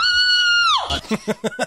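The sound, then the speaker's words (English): A voice imitates a long, high, sustained scream of agony that falls off sharply, followed by a few quick rhythmic bursts like breathy laughter. “And she just screams with utter agony.”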